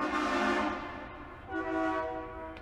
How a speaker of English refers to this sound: Why does it sound like a train is going by? Because it is a train. We don't have tracks around this son of a bitch.